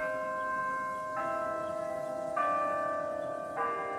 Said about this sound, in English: It's a musical sound that's heard every quarter hour on hundreds of campuses, including the U of A.